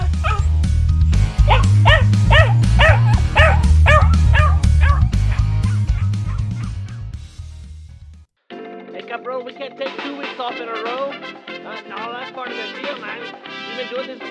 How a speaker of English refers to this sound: Akita, she's our guard dog around here. She don't sound like much, but she's got a bark